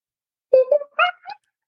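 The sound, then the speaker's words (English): A person's voice imitates a monkey with four quick, loud, high-pitched hooting squeals that climb in pitch, delivered on their own with no talking around them. “Can you do your best monkey impression?”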